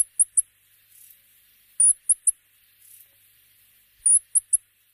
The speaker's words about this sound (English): Both birds have very high-pitched calls, which don't work well on radio, but here's a rock wren call just to give you a quick sense.